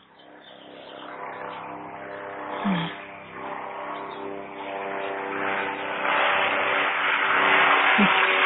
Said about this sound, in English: Sitting outside in Los Angeles and some very loud helicopters going above. Traffic helicopters and things like that.